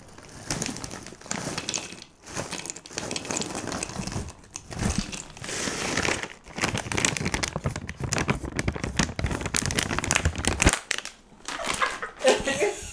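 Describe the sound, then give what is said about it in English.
A steady, dense rattle of nuts tumbling and clattering as they are poured into a bowl, coming in several bursts with brief pauses between them, fairly loud and with no talking. “That was me pouring my nuts. Yeah. Putting her nuts in a bowl.”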